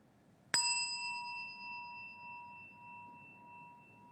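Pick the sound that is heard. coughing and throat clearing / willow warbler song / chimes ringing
chimes ringing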